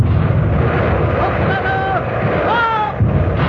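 Heavy naval guns of the warship Artemis open fire in a loud, dense roar of rumbling blasts. Thin whistling tones glide through the din, with renewed booms at the start and end.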